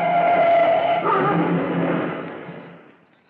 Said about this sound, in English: you want to know why Ladder 102 crashed into the Staples building this afternoon